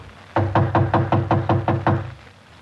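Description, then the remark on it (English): Someone raps on apartment door 5D, which stands partly open, in a quick, even series of about eight loud knocks, then stops. No voices are heard. “I'll knock again.”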